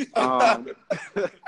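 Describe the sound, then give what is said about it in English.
A person clears their throat in a few short, voiced bursts, one longer rasp followed by two or three quicker ones. “You got to clear your throat every time you get to talk.”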